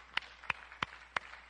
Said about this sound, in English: Let's even applaud the ladies, shall we? Let's give them a big hand today.